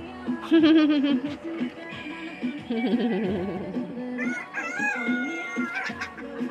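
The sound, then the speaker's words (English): A person imitates a goat's bleat: a series of wavering, quavering vocal cries, fairly loud, rising and falling in pitch over several seconds with no ordinary speech. “Told her that she sounded like a bleated like a lamb or a goat or something like that. Sound like a goat.”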